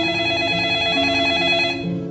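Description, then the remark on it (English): A telephone rings loudly and steadily, a sustained, bright electronic trill that keeps going without a break. No one speaks over it. “And as soon as it's over, your phone rings.”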